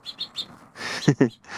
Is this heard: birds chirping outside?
yes